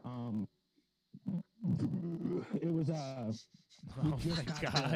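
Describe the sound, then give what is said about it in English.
A long, loud, gravelly beer burp rumbles, stretching over a couple of seconds, with a person speaking briefly before and after it. “That was a beer burp.”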